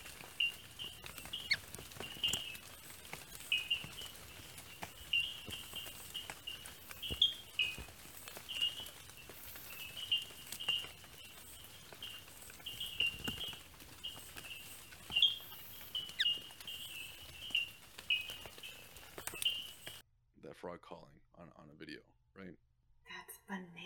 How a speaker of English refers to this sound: Austin was so kind to send me not only the video, but audio file of this cute little frog.